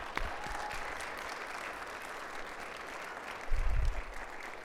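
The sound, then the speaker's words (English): A church audience applauds steadily to honor a longtime church member, a dense patter of many hands clapping at an even level for several seconds, with a brief low thump partway through and no one speaking. “And so let's just honor her with a round of applause.”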